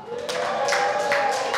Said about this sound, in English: Addicts, all the addicts clapped.